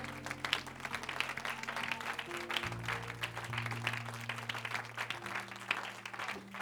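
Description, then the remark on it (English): An audience at a church service claps their hands together unto the Lord in a dense, steady wash of applause, while sustained organ chords hold and shift underneath. “Just give a hand clap unto the Lord this morning.”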